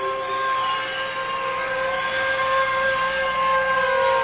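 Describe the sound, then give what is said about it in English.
Air raid sirens wail in a loud, continuous drone, their layered tones holding nearly steady across the few seconds with no voices present. “Then the sirens would rise and then fall slowly. Then they would warble like enraged demons.”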